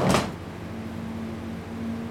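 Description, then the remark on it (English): A short mechanical click and clunk as a man fiddles with and releases a fridge door latch, followed by a steady low hum with a faint tonal whine running underneath, no voices present. “He beckons me to the fridge, and I brace myself. Don't look so bloody frightened, he says, fiddling with the latch.”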